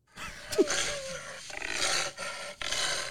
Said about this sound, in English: Is that a Jaguar? What the fuck? That's a Jaguar, but I don't know if he was having sex or just roaring.